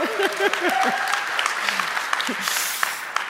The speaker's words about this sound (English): We got to get this together. If you're going to clap, like clap, you know, like let's just coordinate here. Everyone, one, two, three, like, you know, clap.